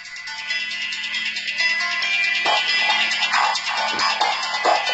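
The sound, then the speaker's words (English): A phone ringtone rings continuously, a bright, steady electronic melody that plays on throughout without pause, fairly loud and with no one speaking over it. “Oh, my phone's charging now. It's over in the other room.”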